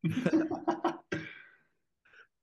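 A loud coughing fit: a rapid string of harsh coughs, then one heavier cough trailing off, a short pause, and another cough starting at the end.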